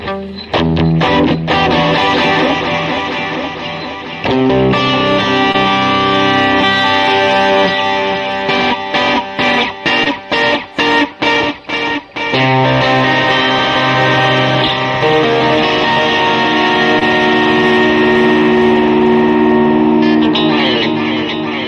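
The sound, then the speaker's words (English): Loud, sustained electric guitar chords drenched in ping-pong stereo delay and reverb, played on a guitar with P90 pickups, with a stretch of choppy, rhythmic stabs midway whose repeats echo back and forth before the chords swell again. “Yeah, if you're wearing the headphones, listen to the stereo delays.”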